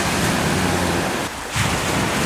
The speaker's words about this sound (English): Sound of the sea, rather soothing.